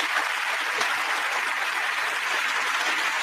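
A burst of canned applause sound effect, played by the engineer on request: many hands clapping in a dense, steady, hissy wash that holds at an even level for about three seconds, with no voices over it.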